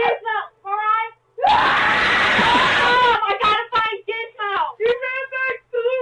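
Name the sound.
person screaming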